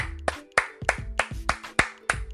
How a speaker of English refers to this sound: So I just want to thank you guys for that. You know, I got to clap it up for y'all.